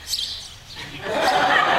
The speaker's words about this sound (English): Oh, hi, little guy. A grassland sparrow? I thought those were going extinct.